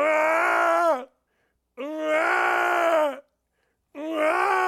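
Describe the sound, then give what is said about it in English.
Men yelling and groaning in a video of rock climbing on bikes, in three long, strained bursts, each about a second long with brief silences between, loud, with no speech. “I love the vocals, man. The yelling.”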